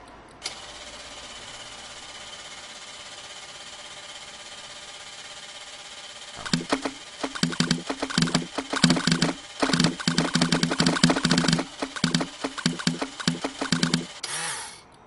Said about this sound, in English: That was a blender. Oh yes.